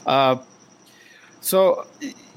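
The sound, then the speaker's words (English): A cricket chirps steadily and without pause by rubbing its legs together, a thin high-pitched trill running the whole time in the background while short bursts of voice cut in over it. “Yeah, that fucking cricket's a try-harder.”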